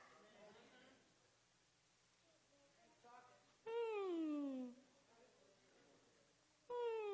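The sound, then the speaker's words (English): A human voice imitates a whimpering dog with a loud, high whine that slides downward for about a second, followed later by another whine beginning, after a stretch of quieter murmuring. “That's how a dog whimper.”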